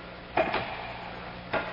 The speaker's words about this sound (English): The music faded, and there was only the sound of our footsteps. echoing on the stone.